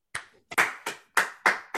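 Hand clapping: about six sharp, bright claps at a steady, fairly quick pace, each with a short ringing tail, with no talking.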